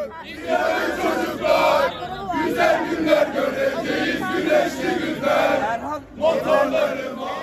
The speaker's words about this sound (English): Several hundred, mostly young people, were still there, waving Turkish flags, chanting hymns and the national anthem. They seemed defiant and faithful that Kılıçdaroğlu would be able to squeeze out a win in the second round.